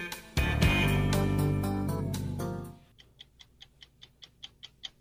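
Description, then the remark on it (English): The 60 Minutes TV show theme: a loud, full musical swell fades out, then a stopwatch ticks alone in a steady, crisp rhythm, about ten sharp ticks in two seconds, clear. “That's a 60 Minutes theme. It's not a song. It's a clock.”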